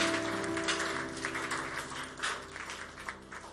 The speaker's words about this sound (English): Please clap your hand for the Holy Ghost for giving us a word today.